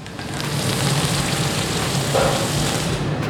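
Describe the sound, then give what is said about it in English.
A hot metal rod used to shape glass is cooled in water, sizzling with a steady, loud, bright hiss and fine crackling that holds for a few seconds, with no voices. “But before I can start to shape it into something useful, I need to cool the rod in some water.”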